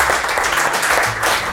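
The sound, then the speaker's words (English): An audience applauds steadily, a dense, even wash of many hands clapping at full volume with no pauses, lasting under two seconds. “You guys, let's give it up for Koray, Özdemir, and Paul John.”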